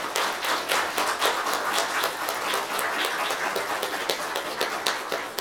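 A church audience applauds veterans for their service, steady, dense clapping for about five seconds, many hands overlapping into a bright wash with sharp individual claps popping through. No one speaks.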